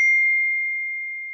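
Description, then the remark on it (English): A single clear, bright notification ding, like a phone alert, rings out alone and fades slowly over about a second and a half. “sounds a lot like the notification sound on an iPhone.”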